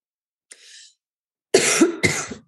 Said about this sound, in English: My cough drop is going to kick in here at any minute, and I'm going to stop coughing, and it's going to be amazing. I'm allergic to all things fall, so I completely understand.